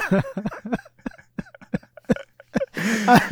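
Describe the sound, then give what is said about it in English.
A run of short, choppy vocal bursts, like stifled laughter or hiccups, leads into a longer, breathy, voiced yawn that swells loudly at the end. “We were about to get started and I had this yawn.”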